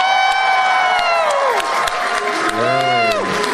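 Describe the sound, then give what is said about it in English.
A crowd booing, or 'doofing' for Bidoof, many voices holding drawn-out tones that slide downward in pitch, in two loud swells, with a deeper, lower wave of boos in the second. “We got some, right. A lot of boos.”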